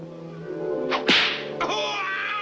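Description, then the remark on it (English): A sharp whip crack snaps out loud, followed moments later by a second, softer flick, over a sustained tonal musical background: a whip flicked on the nose. “A lion fears the whip, and a light flick of the whip on the nose will hold the most ferocious lion in check.”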